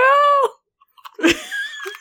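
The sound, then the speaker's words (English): A sharp, crackly crunch of someone biting into an Oreo cookie, followed by brief chewing noises, with a sustained hummed vocal tone before it and a short voiced sound after. “I'm going to finish this Oreo and then we can get back to talking about this amazing book. Okay. Crunch.”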